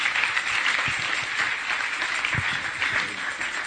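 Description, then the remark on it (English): A church audience claps for the music at the close of a service in a dense, steady wash of applause that holds at an even, fairly loud level throughout, with a few lower thumps showing through the crowd noise. “Let's clap for the music.”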